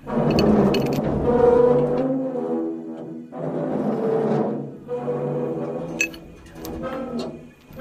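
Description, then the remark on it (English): A deep, rumbling creature voice groans in three long, swelling phrases with a rough, resonant low tone and a faint metallic edge, with short pauses between them. “This rumbling voice here.”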